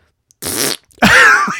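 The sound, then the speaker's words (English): A loud, drawn-out rasping fart sound, apparently blown with the mouth, comes in two bursts: a short breathy sputter, then a longer, louder rip that trails off at the end. “He didn't even do like a little fart. It was like a in the holiday spirit of giving. Rip roaring.”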